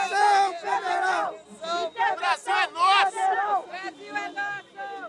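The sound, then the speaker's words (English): A couple dozen Bolsonaro-supporting protesters outside Rio de Janeiro, Brazil, shout the slogan "federal intervention" in unison: loud, rhythmic chanting with strained, high-pitched voices rising and falling in repeated bursts. “A couple dozen protesters, they're shouting federal intervention.”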